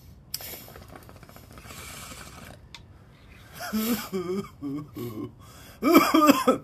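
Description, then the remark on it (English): A stretch of rough, breathy noise gives way to several harsh coughing bursts, uneven and throaty, the last ones loudest, with no talking around them. “You're at the coughing point too. Cough core.”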